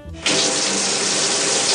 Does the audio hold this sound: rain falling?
no